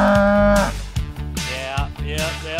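A cow moos loudly, starting with a long, low, drawn-out call, followed by a few shorter, throaty lows in quick succession.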